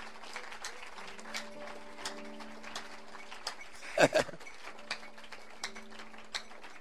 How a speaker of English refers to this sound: Clap your hands unto God. Clap your hands unto God. Clap your hands unto God.